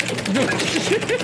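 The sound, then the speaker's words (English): Someone pounds hard on a computer keyboard, a fast, loud, uneven clatter of sharp clicks, with faint vocal murmurs mixed in beneath the typing. “I don't know which one of you is pounding your keyboard like a pile driver.”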